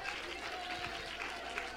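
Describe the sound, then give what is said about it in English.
A church audience claps hands in praise in Jesus' name, a dense, continuous wash of applause that holds steady and fairly loud throughout, with a faint sustained tone running underneath. “Come on, let's clap our hands and give him praise right now, church.”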